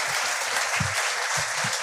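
An audience claps steadily for a speaker in a dense, sustained burst of applause, many hands at once, fairly loudly, with no one speaking over it.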